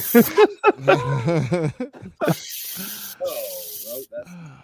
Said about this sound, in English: The laughs are always the best. The joy your children are having by silly stringing.